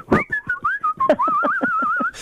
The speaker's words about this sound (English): we don't get as much whistling on the streets as we used to, and I blame the death of the milkman. I like whistling. I whistle when I feed the birds in the morning, throw the crust out.